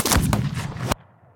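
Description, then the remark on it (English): A loud, booming gunshot, the final shot of a duel, with a complex, layered blast that fills the full range, sustaining for nearly a second before cutting off abruptly into a faint low rumble. “One thing to know about that final duel is that the final gunshot is rather shocking, both in its volume and scale and its kind of complexity.”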